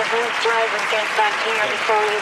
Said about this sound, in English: I'm friends with Steve Spielberg. That gets a round of applause.